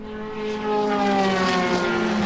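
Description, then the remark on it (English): A Spyker race car's engine roars loudly past with a sustained, high-pitched mechanical whine that swells in volume and then holds steady, with no voices. “Here's the Spyker.”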